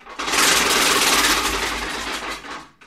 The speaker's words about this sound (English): It sounds like a locomotive smashing through a house. And the cool thing about this machine, I actually rescued this from a Toronto antique shop, and took me a couple years to figure out how to get it to Chicago.